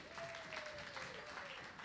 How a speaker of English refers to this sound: So put your hands together, clap your hands and stamp your feet